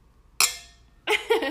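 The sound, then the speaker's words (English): A bright glass clink rings out and fades with a lingering shimmer, followed about half a second later by another brief, rattling glassy knock, moderately loud. “Clink.”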